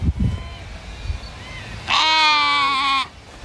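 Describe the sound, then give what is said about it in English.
A single loud Southdown babydoll sheep bleat lasting about a second, rich and wavering, following quieter low rumbling and faint background noise, on a property in Pinjarra, Western Australia. “When Deb Royans decided to start breeding South Down baby doll sheep, she didn't realise they would take off in popularity.”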